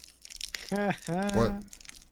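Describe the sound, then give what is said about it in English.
A crinkly snack package rustles and tears open in short bursts of crackling plastic, while a voice sounds out in the middle of the handling. “I had to open up a thing of, what is it? Toasty.”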